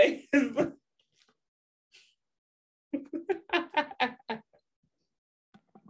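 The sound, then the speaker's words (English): A person coughs and clears their throat: a quick pair of harsh bursts, a pause, then a rapid run of rough, hacking coughs before it trails off. “I had to cough.”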